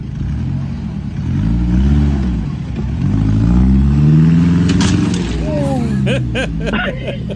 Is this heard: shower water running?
no